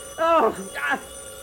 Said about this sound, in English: The phone, get it quick now before it wakes the girls.